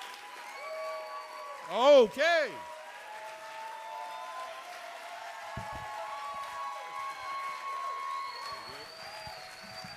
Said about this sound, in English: Start clapping right now. Start clapping right now. Right to left, left to right. Make some noise